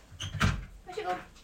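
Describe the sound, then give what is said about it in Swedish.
A quick metallic clatter as a dog's crate door is opened to let the dog out, followed by a brief, high dog whimper, fairly quiet, with faint voices in the background. “Jag ska släppa ut hunden från buren.”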